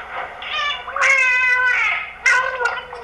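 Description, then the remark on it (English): An animal vocalizing through its blowhole while trying to say a person's name, using the water to help make the sound, a drawn-out, wavering, harmonic wail that sounds like a spoken word, followed by a sharper second burst, with a wet, gurgling, drowning-like quality. “He would eventually roll over almost into the water with the blowhole to...”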